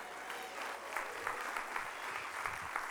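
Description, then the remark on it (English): An audience applauds, giving God a clap offering, in a steady, dense wash of many hands clapping, sustained for the full three seconds with a few sharper claps standing out. “Somebody should have gave God a clap offering.”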